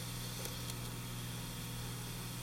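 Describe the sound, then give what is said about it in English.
A steady cassette tape hum: a low, constant drone under a wash of faint hiss, unchanging throughout with a couple of tiny clicks near the start. “Cassettes with their hum.”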